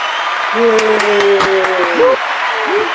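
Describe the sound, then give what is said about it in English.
A burst of crowd applause greeting guests from Union Bank, with a few sharp claps and a sustained, wavering cheer over a steady hiss, lasting a few seconds before fading. “The crowd goes wild.”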